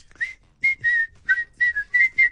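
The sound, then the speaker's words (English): A person whistles a quick, lively tune of about eight clear, bright notes in short bursts, fairly loud, with no talking. “That's a strong whistle”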